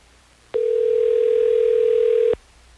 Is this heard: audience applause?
no